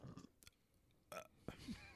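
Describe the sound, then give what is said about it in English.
A small, frothy baby burp sounds, wet and bubbly with a short gurgling tail, followed by a couple of faint breathy noises in an otherwise quiet space. “It was a baby burp. It sounded frothy.”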